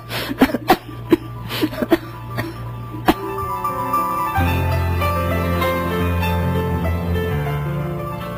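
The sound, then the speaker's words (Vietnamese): A woman has a violent coughing fit past midnight: a rapid series of harsh, explosive coughs in quick succession for a few seconds, gradually spacing out, before a steady, sustained musical tone takes over. “Quá nửa đêm, bỗng chị nổi cơn ho dữ dội.”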